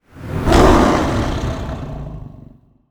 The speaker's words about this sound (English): You flip the sword up, you shove it underneath its mouth. It roars in absolute pain.